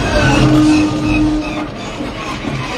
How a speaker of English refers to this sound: Honorable mentions, I definitely would say could have been like a tie on my top five, is the hyperdrive malfunctioning. Oh, yes. Classic. I love that noise that...